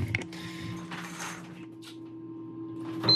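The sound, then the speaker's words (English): A low mechanical hum runs steadily throughout, broken by scratchy bursts of noise, before a short, high-pitched electronic beep from a shower timer, used to limit water use, sounds near the end; buckets on the floor collect the shower water. “That beep is the timer.”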